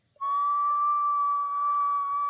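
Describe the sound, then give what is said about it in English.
A person imitates the tea-kettle whistle of an older, hyperactive Brittany Spaniel hunting dog: a single steady, high-pitched whine that rises in briefly, then holds loud and unbroken for about two seconds, with no talking. “With our Brittany Spaniel, we have a very hyperactive, older now, hunting dog, mm-hmm. who does this tea kettle whistle.”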